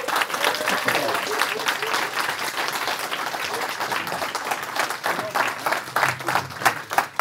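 A live audience applauds steadily for about seven seconds, a dense wash of many hands clapping at an even, fairly loud level, with a few sharper individual claps standing out near the end.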